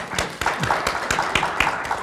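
Scattered applause from audience members who have received Kauffman money, a steady patter of many hands clapping with sharp individual claps standing out, moderately loud and continuous without any voices.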